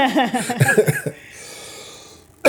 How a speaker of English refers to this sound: Apologies for the coughing. Actually, I have to say it this way. Sorry for the cough.